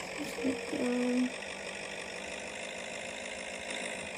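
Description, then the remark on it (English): A car engine runs at low speed with a steady, even hum throughout, and a brief higher tone rises above it near the start. “I'm just crawling in my car, so yeah, just yes, everything.”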